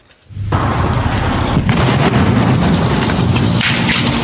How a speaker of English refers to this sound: And that is a boat exploding under the Pitt River Bridge this morning, sending thick black smoke into the sky. The explosion and fire catching commuters on the bridge off guard.